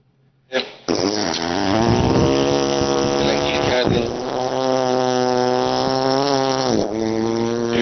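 A motorboat engine drones with a loud, buzzy, low rumble that starts abruptly after a short click, holding steady for several seconds with brief dips in pitch and throttle along the way.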